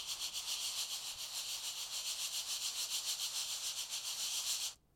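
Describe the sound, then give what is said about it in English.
Dry grains of rice swirl around a bowl in a steady, hissing rattle that pulses rhythmically, fairly loud, then stops abruptly just before the end. “Elegant yet robust, this is Rice and Bowl.”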